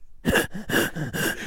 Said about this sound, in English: No, shallow breaths. Shallow breaths. You're breathing in. I don't want you to breathe in.